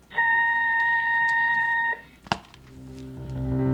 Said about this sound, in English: At the tone, the time will be 8:06 and 30 seconds.